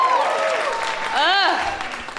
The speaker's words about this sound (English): Much more applause for Julie Andrews, you assholes. Julie Andrews! Thank you.